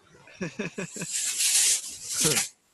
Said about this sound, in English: That was his wife. That was air freshener. She was like, this smells like shit in this.